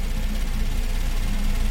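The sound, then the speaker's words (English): A truck engine rumbles steadily as it drives fast without stopping at checkpoints, a continuous low drone with a hissy wash on top and no change in loudness. No one speaks. “That truck's driving hell-bent for leather and not stopping at any of the checkpoints.”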